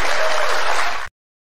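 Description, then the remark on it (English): An audience at a CNN town hall in New Hampshire applauds, a dense, steady wash of many hands clapping at once that holds loud for about a second before cutting off abruptly into silence. “And they're clapping.”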